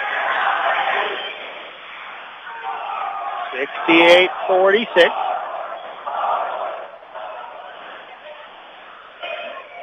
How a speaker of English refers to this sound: Student section's having a little cheer off here.